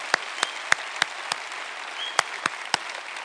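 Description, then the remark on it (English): An audience applauds the veterans honored that day on Memorial Day, steadily, a dense wash of clapping with a few sharp hand claps popping out at irregular intervals. No one speaks over it. “Can we give a great round of applause to all our veterans that were honored today?”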